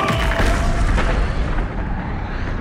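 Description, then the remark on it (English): A massive explosion booms loud, its deep rumbling roar sustained and slowly fading over a few seconds, with no voices present. “Using his powerful legs, Tāne thrust his father up into the heavens, causing an almighty explosion that resounded across the cosmos.”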